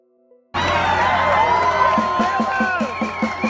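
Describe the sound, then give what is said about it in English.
A large crowd cheers loudly and steadily, a dense roar of voices with whoops and shouts rising over it, starting abruptly and holding at full volume. “This is a hell of a crowd.”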